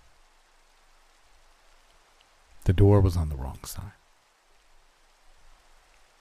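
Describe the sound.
Steady, soft rain hisses evenly throughout, a constant wash of fine patter with no breaks. A man speaks one brief sentence over it partway through, then the rain carries on alone.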